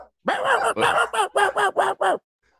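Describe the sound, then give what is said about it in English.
A person imitates a dog's barking, barking right back at him, with a rapid run of about eight harsh, throaty bark-like bursts, loud, then falls silent. “I'm barking right back at him, dude.”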